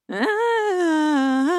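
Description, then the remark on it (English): A person voices a drawn-out, whiny yawn in imitation of the yawn just given by Stinky, starting with a quick rising yelp and settling into a long, steady, slightly wavering tone before lifting again at the end. “Literally, that's what she just sounded like.”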